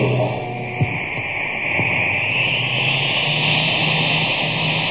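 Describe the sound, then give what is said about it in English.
A supercharged cosmic surface car engine, filled with super fuel, roars steadily: a dense, hissing drone with a high whine layered over a low rumble, holding constant and loud throughout with no voices. “Boy, that cosmic surface car is really roaring now.”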